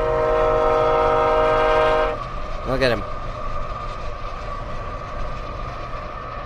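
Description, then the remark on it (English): A Burlington Northern train's loud, sustained horn chord blares for about two seconds, then cuts off, leaving a steady rumbling rail noise and rolling wheels, with a brief voice speaking over it. “That's a Burlington Northern train.”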